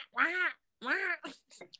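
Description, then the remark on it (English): A person imitates a duck with two drawn-out, nasal quacks, followed by a few shorter trailing vocal bits, fairly loud. “Like quack.”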